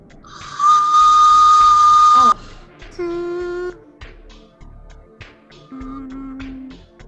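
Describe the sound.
A person loudly imitates a train whistle: a breathy, sustained high whistle held for nearly two seconds that drops off at the end, followed by a few shorter hummed, wavering tones.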